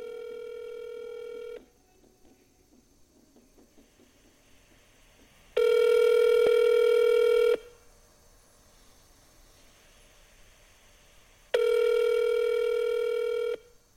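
A telephone line tone sounds as a phone number is dialed, in three steady two-second bursts separated by long, quiet pauses, clear with no voices.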